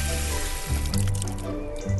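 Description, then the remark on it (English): Water pours steadily into a hole in a garden late at night in mid-August, a continuous splashing rush with a hollow, rising resonant tone as the space fills. No voices are heard. “Water in a hole. That's the theme of tonight's podcast.”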